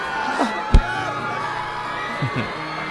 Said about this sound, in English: Well, I guess they notice me now. And they're screaming because they're jealous.